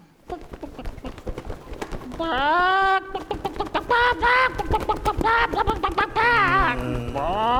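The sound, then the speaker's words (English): A chicken clucks and lets out several loud, strained squawks in irregular bursts over a busy background of scuffling and clatter. “Chicken's dead.”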